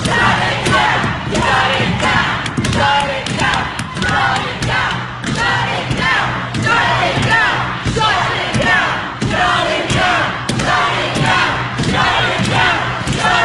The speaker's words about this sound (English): you literally hear them slamming their hands on the thick, locked doors to the Supreme Court.